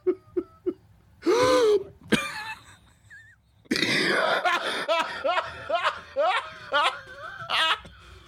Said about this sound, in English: All that breathing? What you doing breathing when another brother's talking?